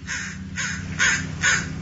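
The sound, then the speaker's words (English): A crow caws four times in a steady rhythm, harsh, each call loud and ragged, with a low hum running underneath. “That's him. It's Canuck the Crow.”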